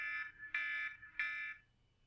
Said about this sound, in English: Well, I'm at the buzzer.